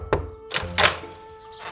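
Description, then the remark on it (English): Three sharp, excited knocks on the door of a house in quick, uneven succession, the last two landing close together, followed by quiet. No one speaks. “Hermes arrived at Sasha's and knocked excitedly on her door.”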